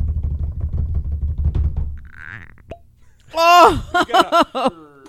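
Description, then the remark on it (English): Rapid low tapping like a drum roll on a tabletop, then a soft hiss and a single sharp cork pop as a Slipknot whiskey bottle is opened, followed by loud excited exclamations from several voices. “Of course, the Slipknot whiskey would have the best cork pop I've heard yet.”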